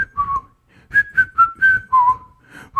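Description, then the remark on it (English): A single person whistles a bouncy song melody for others to guess in a game, a clear pure tone hopping between short sliding notes in a quick, phrased rhythm, with no talking over it. “I'm supposed to whistle this.”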